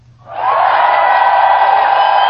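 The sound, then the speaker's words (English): A crowd erupts into loud, sustained cheering and whooping that swells in quickly and holds steady at full volume, a dense wall of excited voices. “Where is my cheering? Right here.”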